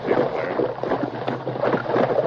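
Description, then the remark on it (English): Horses, including the masked man's horse Silver and Tonto's horse, splash across the shallow waters of the Rio Grande, a steady churning of water with irregular sloshing bursts that stays fairly loud throughout, with no voices. “The masked man and Tonto forded the river.”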